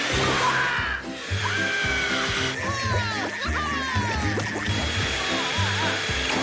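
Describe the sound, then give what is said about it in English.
A hair dryer switched on high to warm up water roars loudly, a steady whirring rush with swooping whistle-like tones sliding up and down over a bouncy musical backing. “I have just what you need. My Jetima dryer. This will warm up your water in a jiffy.”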